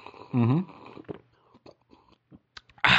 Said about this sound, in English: Perfect. It's good stuff. Sorry for slurping in your ear there.